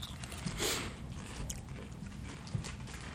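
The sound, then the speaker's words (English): A man chews food, with soft, irregular wet crunches and bites over a low rumble. No one speaks. “His eyebrows went up about 10 seconds after he started chewing.”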